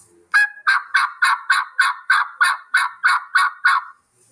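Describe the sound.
A loud, close turkey gobble made on a mouth call: a quick rattling burst of about a dozen rapid pulses lasting a few seconds, with no talking.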